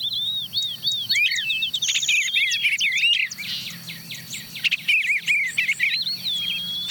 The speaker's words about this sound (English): Okay, who's that? There's a catbird, sounding like a cat mewing.